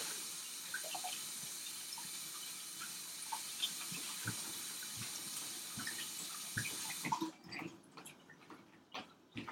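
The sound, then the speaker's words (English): A steady stream of tap water runs with scattered splashes and scrubbing knocks as a potato is rubbed under it; near the end the flow stops and a few louder wet clunks follow. “That's how much you have to wash this potato.”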